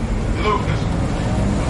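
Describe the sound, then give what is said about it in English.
Steady low rumble of a bus driving, a continuous engine and road drone, with faint muffled voices underneath. “Bus surfing.”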